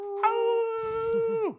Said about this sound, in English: and then they hear a terrible howl from outside the ship.